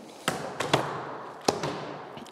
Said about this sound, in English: The class are going to make miniature clay coffins, but first they have to work the clay to get rid of air bubbles.